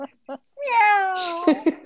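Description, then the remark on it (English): A person imitates a cat's meow, a drawn-out, gliding vocal whine lasting about a second, preceded by two brief spoken syllables and followed by short voiced bits, fairly loud. “I'm here, meow.”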